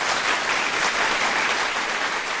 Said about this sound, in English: Hey, the people like you, so they clap.